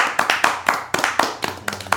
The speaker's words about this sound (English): Golf claps.